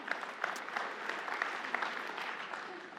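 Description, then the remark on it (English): A church audience claps steadily for a few seconds during a sermon, a dense patter of many hands at moderate volume, somewhat subdued rather than roaring, with no voices over it. “I knew the political thing would make you guys all not clap as much.”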